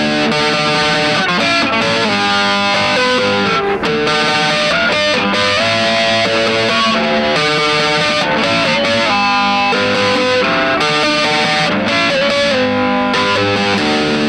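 Electric guitar chords tapped out as chimey, bell-like harmonics, struck in a steady repeating rhythm with a bright shimmering ring and slight distortion, loud and continuous with no voices.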